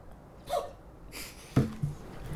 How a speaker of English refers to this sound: just sneezed. I don't know if the mic got that.